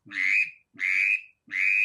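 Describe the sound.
Three loud whistle blasts from a waterfowl whistle call, each about half a second long, evenly spaced with brief gaps, a bright rising-then-steady tone with no voices.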